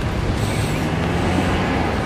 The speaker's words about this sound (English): You can hear the trucks on the highway down there, off to my left.